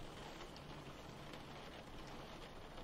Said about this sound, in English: In the rain?